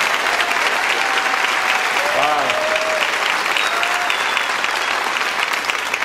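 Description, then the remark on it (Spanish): A crowd applauds God steadily, a dense, even wash of clapping that holds at the same loud level throughout, with a few brief cheers or whistles rising above it. “Acompáñenme a darle un fuerte aplauso a Dios por lo que va a hacer en este tiempo.”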